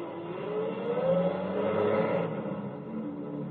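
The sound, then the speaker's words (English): A truck engine revs up with a rising whine and pulls away, staying fairly loud for a few seconds before easing slightly as it drives off. No one speaks. “Get your truck out of here at once!”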